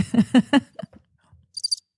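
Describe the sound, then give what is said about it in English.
A crickets sound effect: three low, buzzy tonal bursts give way to a short, high-pitched cricket chirp of three rapid pulses near the end, fairly soft, with no talking. “Do you have a crickets noise that you can play for me?”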